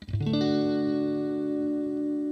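An electric guitar note slides up quickly, then rings out as a long, steady sustained tone with an echoing, effected sheen. It's fairly loud, with no talking.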